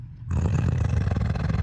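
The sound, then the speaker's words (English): A person growls like a pointing hunting dog: a low, rough, sustained rumble that kicks in suddenly after a brief quiet moment and holds steady, gritty and loud, with no words spoken. “And just, like, let out this disgusting growl, like a dog pointing, like a hunting dog, kind of.”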